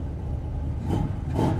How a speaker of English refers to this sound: I pay him, and he drives off.